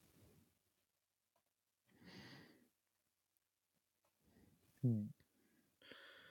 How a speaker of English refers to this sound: Once there, I hunch over onto my knees and have a heart attack. No, I gasp for air. My lungs are like daggers poking my ribs. I can feel my heart in my ears.